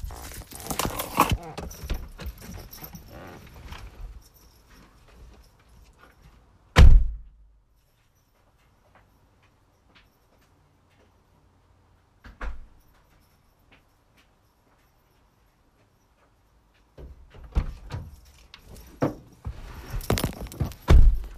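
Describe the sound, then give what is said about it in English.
A person closes their open garage door at home: shuffling footsteps lead to a loud, sharp slam, then a long quiet stretch with one faint knock before footsteps and handling noises return and end in another thud. “So before I begin, y'all, my garage door is open, and I thought that my girls closed the garage.”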